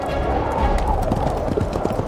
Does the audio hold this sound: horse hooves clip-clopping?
yes